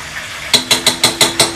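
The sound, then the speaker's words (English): Potatoes seasoned with freshly cracked black pepper are stirred in a pot: after a brief quiet moment, six quick, evenly spaced scraping swishes follow in a steady rhythm, fairly loud and bright, with no talking. “And just give that a nice little stir.”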